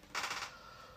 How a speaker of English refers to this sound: I need tissue to blow my nose.